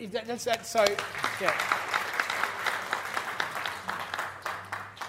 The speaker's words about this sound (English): So, yeah, you can applaud that.